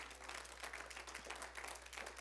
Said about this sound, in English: Amen? Yeah. Amen. Y'all give the Lord a hand clap of praise.